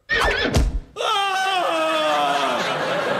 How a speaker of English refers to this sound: And then there are the more traditional punishments, such as keel hauling and horse whipping, for which we use a real horse. In fact, one is about to happen now. Stand still, sailor.